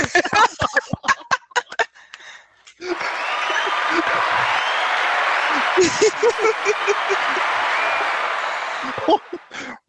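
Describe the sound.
A few scattered claps and brief voices open, then sustained audience applause swells and holds steady for several seconds with cheering voices mixed in before tapering off.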